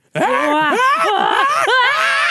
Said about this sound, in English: Screaming. You hear me?